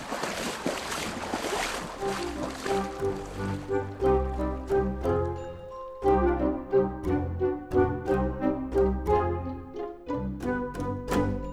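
River water rushes and splashes loudly for the first few seconds as the river is being crossed, then a bright, rhythmic musical passage takes over and carries on to the end. No one speaks.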